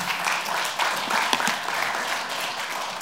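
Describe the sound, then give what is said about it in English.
A crowd at a church service applauds steadily, a dense wash of many hands clapping at once with a few sharper individual claps standing out, holding an even loudness throughout. “You guys are like, should I clap?”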